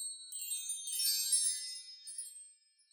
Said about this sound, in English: The flute was beautiful, but there was another instrument, and it was very enchanting, kind of a unicorn sound. Tell us what that was called. Well, that instrument's called the chimes.